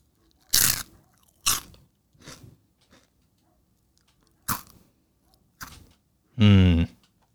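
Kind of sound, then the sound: food or drink, crunching a chip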